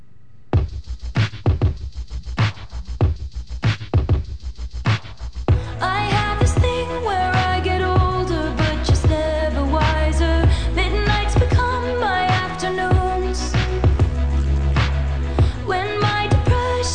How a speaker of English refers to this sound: This is a sad song. This is kind of sad. It sounds like it's autobiographical.